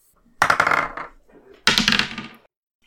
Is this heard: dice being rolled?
yes